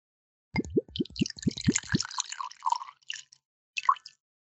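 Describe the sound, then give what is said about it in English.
Bourbon glugs from a bottle into a glass in a quick run of about seven rhythmic pulses, followed by a thin splashing trickle and a couple of faint drips, with no talking. “Okay, let me pour. Let me uncap. Okay. Let me touch glass.”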